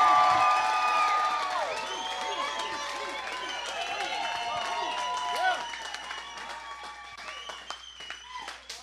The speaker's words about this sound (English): Keep the applause going, guys, one more time. Give it up for PBD.